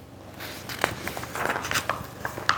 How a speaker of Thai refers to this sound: คณะของนักสืบหน้าก้นเดินมาจนถึงกลางไร่มัน